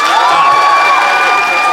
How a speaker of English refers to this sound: But if you think Ben and Joe won the day, I would like you to applaud now.